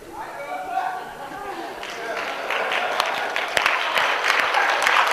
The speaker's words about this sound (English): I think I want to clap for that.